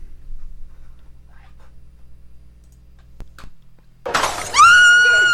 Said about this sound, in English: The freeze frame starts again, and the pint glass travels down and hits a girl right in the head. She's covered in blood and screaming.